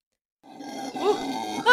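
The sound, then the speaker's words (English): Howler monkeys howl in a deep, rough, droning chorus that starts after a brief silence and holds steady, with swelling rises in pitch and a louder surge at the end. “Yeah, these are howler Absolutely monkeys.”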